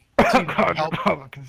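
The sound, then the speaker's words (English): A loud cough with a rough, voiced, throat-clearing quality, broken into a few raspy bursts over about a second and a half, with nothing else heard around it. “You have a bit of a cough there.”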